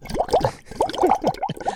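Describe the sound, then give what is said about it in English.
A quick burst of bubbly, gurgling water splashes, a rapid run of liquid blips and sloshes lasting under two seconds, fairly loud, with no talking, played as an entrance sound effect. “My cue. Mustachio. The grand water entrance.”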